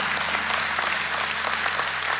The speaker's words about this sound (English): What I want the rest of you to do is I want you all to clap right now because we have some honest people that are seeking healing from God.